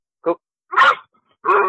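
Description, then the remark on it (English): A 65-pound boxer, German Shepherd and pit bull mix puppy barks three times in close succession, loud, with short yelping barks separated by brief silences and no talking. “He is a boxer, German Shepherd, pit bull mix.”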